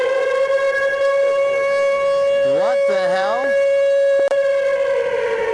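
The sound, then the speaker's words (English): A loud, sustained siren wail holds a steady tone for several seconds while a man's voice briefly exclaims partway through, followed by a sharp click near the end. “We haven't done a siren series in a long time.”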